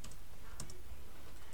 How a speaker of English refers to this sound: One sec. You can hear me typing.